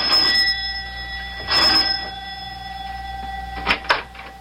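A doorbell at a professor's house rings in three short bursts, its bright metallic tone lingering between presses, clear with no voices.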